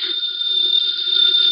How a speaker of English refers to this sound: The phone is ringing. Let it ring. Just as you say. It's the house phone